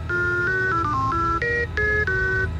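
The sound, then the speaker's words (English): A quick run of electronic beeping tones, about eight short pitched beeps stepping up and down in a melodic sequence, loud and clear over a low steady hum, with no voices. “Let's try one tone for yes, two tones for no.”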